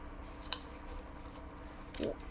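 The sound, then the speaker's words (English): Soft noises of toilet paper being played with: a quick rustle or tear near the start and another brief crinkling burst toward the end, quiet against a low background hum. “I'm just playing with toilet paper.”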